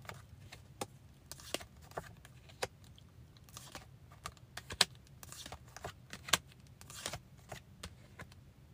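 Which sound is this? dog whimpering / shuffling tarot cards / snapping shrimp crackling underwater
shuffling tarot cards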